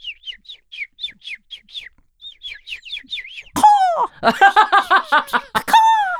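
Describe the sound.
A person mimics bird chirps by whistling: a quick run of high, rising chirps in short bursts, then louder, squeaky voiced tweets, clear with no talking.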